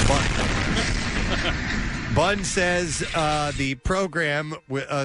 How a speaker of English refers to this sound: The Bun says it will program the cannon to fire in the morning, afternoon, and evening when vultures are likely to be roosting. So all day long, it sounds like. It's just firing that thing off. The cannon produces 130 decibels of sound